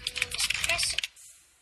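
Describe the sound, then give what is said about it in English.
Fast, clattering keystrokes on a computer keyboard in a dense burst for about a second, fairly loud, then it stops and only faint hiss remains. “There's a lot of typing.”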